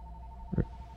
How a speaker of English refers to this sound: Oh wait, are we getting a phone call? Oh my goodness.